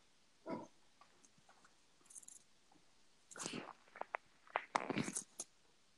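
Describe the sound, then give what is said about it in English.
A female dog named Lucy barks in short, sharp bursts, one early bark, then a quick cluster of several barks toward the end, fairly loud with quiet gaps between. “I sometimes become numb to her barking.”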